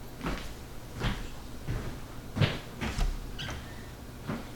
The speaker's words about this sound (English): I'll say good day to you again, and then I shall pointedly close the door in your face.